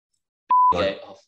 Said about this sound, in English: Sorry, can you just repeat that last name? Friend of the show? Say it and I'll beep it out. Say their name and I'll beep it out.